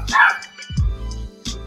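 A dog barks, a loud sharp bark followed by a lower gruff one and another quick bark at the end, with no one speaking.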